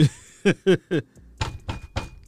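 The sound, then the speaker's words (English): Knocking on a door: three quick, evenly spaced raps, a short pause, then another set of three heavier, rougher knocks. No one speaks. “Who at the door?”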